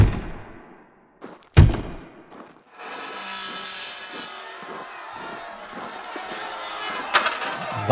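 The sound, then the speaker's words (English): An angry mob pounds heavily on a factory's front door: a few dull knocks and one loud thud, followed by a steady, muffled din of noise with more scattered thumps near the end. “That is a very loud pounding. We should investigate. It appears to be coming from the front door.”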